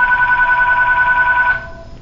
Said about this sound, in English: To me, it was silence and beauty unmatched. The phone began ringing.